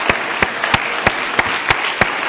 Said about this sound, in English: Lord bless you for standing for the reading of the Word of the Lord. Let's give the Lord a hand clap of praise before we're seated today.